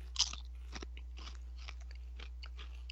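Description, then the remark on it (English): Crisp crunching of spicy sweet chili flavored Doritos tortilla chips being chewed, with a sharp first bite followed by a steady series of softer crunches over a low background hum, no talking. “I'm definitely ready to munch on one of these.”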